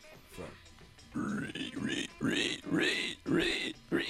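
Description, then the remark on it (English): A person voices a run of nasal, squealing pig oinks, about five loud bursts in quick succession, with a brief quieter stretch before they begin. “Let's hear your best pig impression.”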